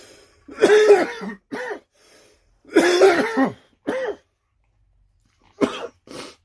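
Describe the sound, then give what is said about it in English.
Repeated loud coughing fits with throat clearing at a cannabis show: two harsh bursts each followed by a short hack, then a final pair of quick coughs, separated by brief silences. “Sorry about all the coughing here, but, you know, it is a cannabis show, so there will be coughing.”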